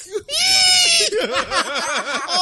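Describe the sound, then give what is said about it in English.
A person lets out a loud, high-pitched squealing imitation of a pig, one long shrill squeal followed by a rapid series of warbling, wavering squeals. “Muscle pig. Squeal.”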